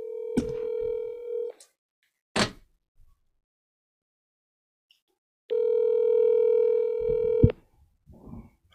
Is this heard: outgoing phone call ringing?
yes